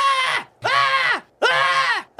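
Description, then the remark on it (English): A voice imitates a screaming skull with three loud, sustained wailing screams, each rising then bending downward in pitch, separated by brief gaps of silence. “The skull starts screaming.”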